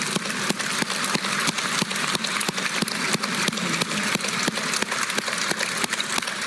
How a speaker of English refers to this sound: One final standing ovation.